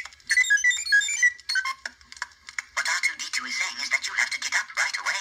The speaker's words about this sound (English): The third night we would fragment your sleep. And the way we did that was we had these little C-3PO alarms that made this unbelievably grating sound.